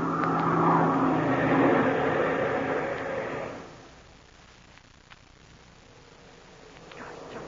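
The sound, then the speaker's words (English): A loud, steady airplane engine drone roars for a few seconds, then its pitch and volume drop away as Shark throttles the plane's engine down, leaving a faint low hum. “The plane's going down the line, Frank.”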